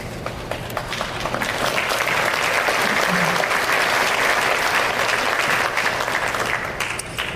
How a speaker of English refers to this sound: If the mics weren't slow, I would have never got that rant off, and I finally got a clap.